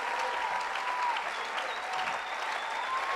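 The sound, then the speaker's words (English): An audience claps continuously for Jesus, a dense, steady wash of many hands at an even level, with faint voices and a few whistling tones drifting over the applause. “Don't stop clapping.”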